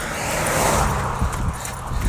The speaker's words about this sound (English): Car coming up here, but it's not too busy out on the road.